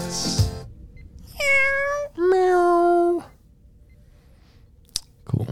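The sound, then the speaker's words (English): A cat meows twice in quick succession, loud: a short, higher cry followed by a longer, lower, drawn-out one, framed by a brief rustling burst before and a sharp click after. “She's a cat.”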